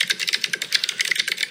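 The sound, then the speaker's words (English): Rapid typing on a Logitech mechanical keyboard, a steady stream of crisp clicky keystrokes with bright, poppy transients and no one speaking. “It's a mechanical keyboard, but with like ramp.”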